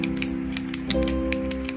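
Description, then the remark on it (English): Ballpoint pens, as used for office ASMR, click and tap in a quick, uneven series of sharp little snaps, about a dozen in under two seconds, over a steady low humming drone. No one speaks. “A lot of people are into the ASMR office ASMR. With those ballpoint pens.”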